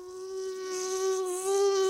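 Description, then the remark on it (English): A mosquito flying into a person's ear makes a high, thin whine that drones steadily for about two seconds, holding one nasal pitch and swelling slightly louder toward the end, with no other sounds around it. “It's when a mosquito flies into your ear and it goes.”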